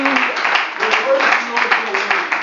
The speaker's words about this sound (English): Why don't we clap our hands unto the Lord before we're seated and worship him right now.